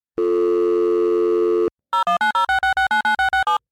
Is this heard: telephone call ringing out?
yes